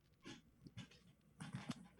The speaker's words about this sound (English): I'm just sitting here watching my literal adorable dog tear apart this stuffed animal, a real creature.